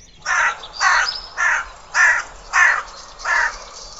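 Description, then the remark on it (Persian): A crow caws six times in a steady rhythm, each harsh, raspy call loud, with short pauses between them and no other sounds around. “ولی راستش صدای کلاغه خیلی وحشتناک بود.”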